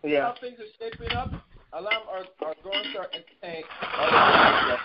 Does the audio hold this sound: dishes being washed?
yes